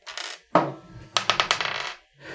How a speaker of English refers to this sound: What's happening is I just rolled a 19 on the dice, right? He is going to... That's his dexterity check to hop into the car and turn on his engine.